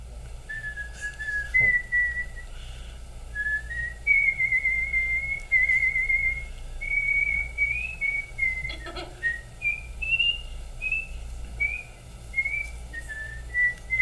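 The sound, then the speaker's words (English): A person whistles a slow, flowing rock melody, clear, with sustained notes gliding up and down over a low background hum, no talking. “Would you just do one more … whistled?”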